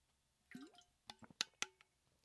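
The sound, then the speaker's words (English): Wet mouth sounds of someone sipping water, a slurp followed by several quick clicky swallows and lip smacks, with no talking. “Let me get a sip of water, please.”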